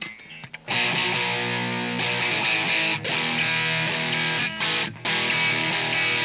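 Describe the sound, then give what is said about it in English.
Crunchy overdriven electric guitar chords played through the Z-Crunch channel of a preamp, with modulation, delay and reverb turned off, ring out loud and sustained, with a few brief gaps where the strumming pauses before resuming, no voices over it. “So I'm going to actually turn off the mod, delay, and reverb for now. And hopefully there won't be too much of a volume jump when I go to Z-Crunch.”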